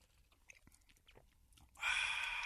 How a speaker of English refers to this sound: So okay. I'm going to give this a shot. Yeah. You haven't had a sip yet? Uh-uh. Oh, it's getting cold. Go.